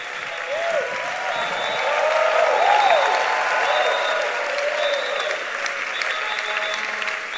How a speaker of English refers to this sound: Are you clapping for Jesus?